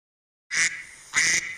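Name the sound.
duck quacking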